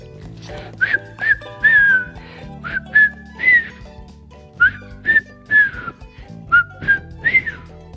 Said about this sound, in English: Here we go, friends. Enjoy the music. It's a wonderful whistling track. So you can whistle if you know how to whistle.